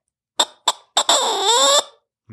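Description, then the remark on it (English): An imitated squirrel bark: three sharp, squeaky chirps in quick succession, then one longer, wavering squeal that trails off, with no talking underneath. “With that bark, you're just trying to get them to bark back.”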